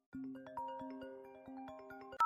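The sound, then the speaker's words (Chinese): A phone ringtone plays a short electronic melody of layered, sustained notes stepping up and down at moderate loudness, ending abruptly with a sharp click as the call is answered. “好吧好吧，那人家就接了他电话。”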